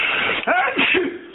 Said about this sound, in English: Bless you. And they had a big sneeze.